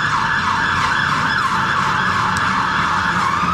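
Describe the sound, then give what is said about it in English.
A fire engine siren wails loudly and continuously, its pitch sweeping up and down over a steady rumble of street traffic at a major junction on King William Street, which runs from London Bridge, with no one talking. “And also, we've got fire engines.”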